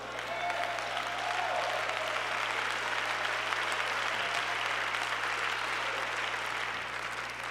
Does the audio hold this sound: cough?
no